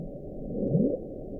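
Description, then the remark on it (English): A recording of the underwater Bloop, sped up 16 times: a steady, muffled low rumble, with one brief, moderately loud upward-sweeping whoop near the middle before the rumble carries on. “we call it the bloop because it sounds like a bloop”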